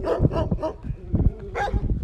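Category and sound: animal, puppy barking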